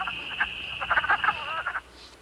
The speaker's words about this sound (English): In Missouri, this species probably breeds in early spring. We'll pause now to hear the call of a wood frog, a rare sound.